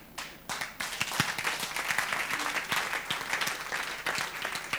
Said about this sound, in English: All those who are clapping, heaven remember you. I said, may the heavens remember you. Heavens remember you.